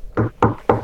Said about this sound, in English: Well, knock on wood.